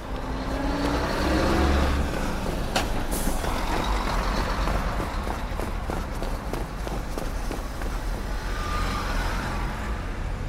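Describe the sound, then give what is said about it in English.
Busy street traffic rumbles steadily, with a car, a blue Honda, passing by and a brief hiss like an air brake, plus scattered footsteps and clatter. No one speaks. “Please don't hit me with your car.”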